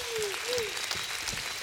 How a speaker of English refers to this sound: Give me my hand clap of praise.